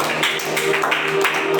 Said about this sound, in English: If you are happy to be in church, I just wanted to give Jesus a big round out of applause. Clap for Jesus.